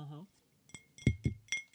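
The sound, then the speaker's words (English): A brief voice, then four sharp clinks of a glass water bottle labelled H20 being handled, fairly loud, each strike ringing briefly at irregular spacing. “So I've got a water bottle.”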